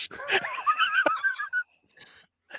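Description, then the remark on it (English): A horse whinnies once, a shrill, quavering neigh lasting over a second, loud, followed by a few faint breathy snorts. “That horse was roided up for sure.”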